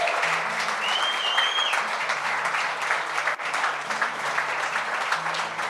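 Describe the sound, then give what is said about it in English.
Steady, sustained applause from a sizable crowd at a prayer gathering, clapping for people who stepped forward, dense and continuous throughout, with a faint whistle rising briefly near the start and a low hum underneath. “Let's clap for these people.”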